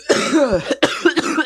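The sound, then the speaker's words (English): A loud coughing fit: a drawn-out, raspy voiced cough followed by several sharp, quick hacking bursts in rapid succession, with no talking. “I'm gonna cough.”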